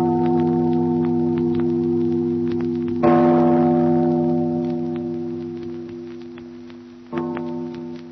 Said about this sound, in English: Father, listen to the bell. Listen to the bell. It rings in spite of her.